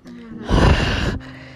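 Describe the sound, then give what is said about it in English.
A voice imitates the heavy breathing of a phone call from a blocked number: one loud, rasping breath lasting under a second, rising sharply and then cutting off, with quiet room tone before and after. “The following day, she received 7 phone calls from a blocked number, including one with heavy breathing.”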